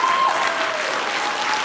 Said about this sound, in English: She didn't need the hand clap, but she earned it. That's for sure.